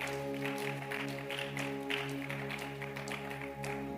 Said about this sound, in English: Give the Lord a mighty clap of it.